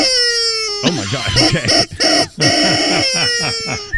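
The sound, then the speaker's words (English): A large rubber chicken lets out a long, strained squawk, a loud wheezing honk that wavers and stutters, while a woman reacts with startled talking and laughter over it. “But the problem is my rubber chicken is huge, and it sounds like this.”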